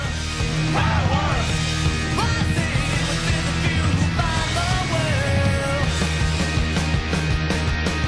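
A loud, dense punk rock track, the opening track of an album released in 2001, plays throughout, with distorted guitars over very simple, steady drumming and a raw, shouted vocal line coming in partway.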